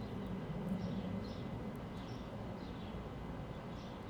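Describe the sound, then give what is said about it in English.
Faint birds chirp intermittently in a backyard, a few short calls spread across the moment, over a steady low outdoor rumble with no one speaking. “We got birds chirping today.”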